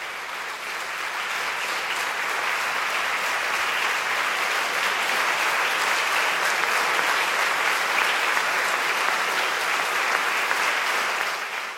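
A church audience gives a standing ovation, with dense, steady applause from many hands that stays loud and even for about twelve seconds, with no voices rising above it.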